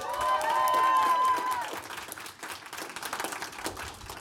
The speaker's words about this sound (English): Now you can clap.